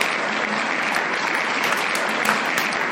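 A crowd claps steadily for a few seconds, a dense, even wash of many hands with no voices standing out, holding at a constant loud level throughout.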